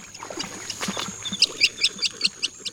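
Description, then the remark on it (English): A jacana calls with a quick series of about seven sharp, high chirps in a steady rhythm, clear, following a brief stretch of softer rustling background noise. “Living in wetlands, jacanas are nicknamed lily trotters for their ability to walk on lily pads.”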